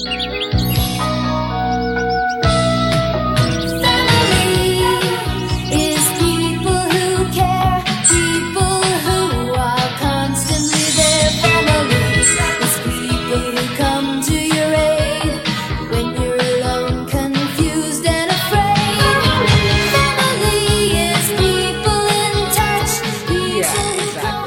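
A sweet, sentimental song plays loud and full throughout, with layered melodic instruments, a steady beat, and bright chirping, bird-like notes near the start.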